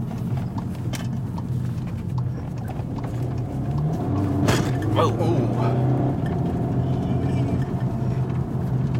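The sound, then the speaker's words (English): A steady low rumble inside a car carrying four people on a rough road, with a sharp jolting thump near the middle as the wheels hit a big pothole; a person exclaims briefly. “And these are some big potholes now.”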